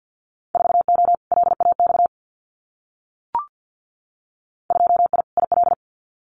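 Fast Morse code of Winter Field Day exchanges at about 50 words per minute: a steady mid-pitched tone keyed in rapid dots and dashes, two bursts split by a pause with a single soft click between them.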